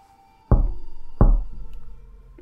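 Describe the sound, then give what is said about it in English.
Two sharp raps on window glass, a little under a second apart, each leaving a brief ringing decay, then a faint tap at the very end. No voices. “The tiny hand that reached up to rap against the glass was corpse white.”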